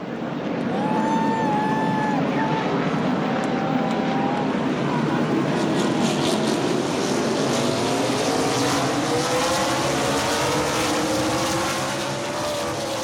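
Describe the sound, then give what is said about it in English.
NASCAR stock cars running on leaded gasoline roar around a racetrack in a continuous loud wall of engine noise, with several cars whining past and their pitch rising and falling as they sweep by. “When NASCAR races put pedal to the metal, it's with a lead foot and leaded gasoline, raising health concerns from some fans and environmentalists.”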